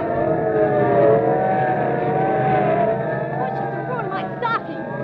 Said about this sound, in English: Okay, listen, sirens. Yeah. Look, police cars, and are they rolling? And we better start hopping. They're not slowing down for anything.